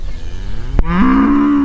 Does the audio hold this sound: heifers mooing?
yes